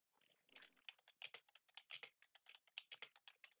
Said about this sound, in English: What are you typing?